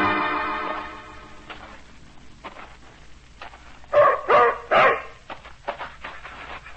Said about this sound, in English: Keep that animal away from me. German shepherd dog, that's what he is. Come out of the army. Like I said, real bad. Vicious.